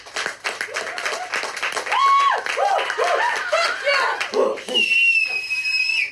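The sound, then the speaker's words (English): A live crowd in the Dog and Ball pub breaks into applause for the venue, dense rapid clapping mixed with cheers, whoops and a couple of sharp whistles, loud, sustained for several seconds. “Round of applause for the venue.”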